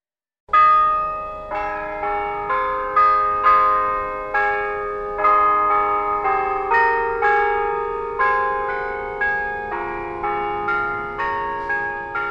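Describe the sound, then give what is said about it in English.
Church bells chime from a church spire in Yorktown Heights in a steady, overlapping sequence of rich tolls, each strike ringing out and lingering before the next, loud and resonant with no voices. “As the chimes echo from the church spire, there's an air of the past that resides in Yorktown Heights.”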